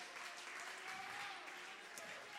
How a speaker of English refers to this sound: Clap your hands, church, and give him some great praise. Would you clap your hands and magnify the Lord?